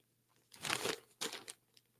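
Papery rustling and crinkling of newspaper pages in two bursts, a longer one followed by a shorter one, like sheets being handled and folded. No voices accompany it.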